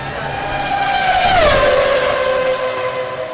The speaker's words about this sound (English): Was an F1 car, if you hadn't guessed.